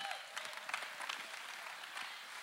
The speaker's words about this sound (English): Give the Lord a clap and a shout in here.